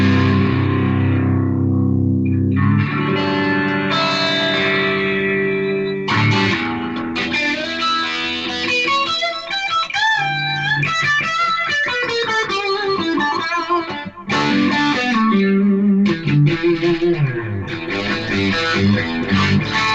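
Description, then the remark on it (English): Electric guitar played through the distorted channel of a small amp, loud, with sustained chords and busy melodic runs, crunchy and saturated tone throughout with no talking. “Here's like distorted channel.”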